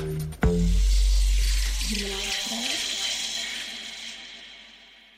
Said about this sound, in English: Okay, so I'm going to pour my I Love Michelada into my beer. Oh my God. Perfect.